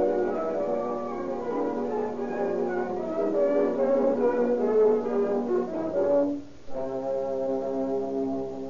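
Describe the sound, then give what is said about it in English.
An ambulance siren sounds loudly and continuously for several seconds as the ambulance approaches, a buzzy, harmonic tone. It dips briefly near the end, then resumes at a slightly shifted pitch, with no voices. “Here comes the ambulance now.”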